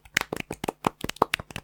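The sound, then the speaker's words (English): Brisk, uneven hand clapping, a quick scatter of sharp claps that sound like a small round of applause for comic book letterers, with no voices over it. “We should all give them a 1 minute round of applause.”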